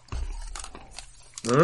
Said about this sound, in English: Maybe it's for drainage. But it goes crunch as you step.